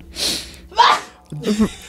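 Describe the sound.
A single loud sneeze: a breathy intake, then a sharp explosive burst, trailing into a brief voiced grunt.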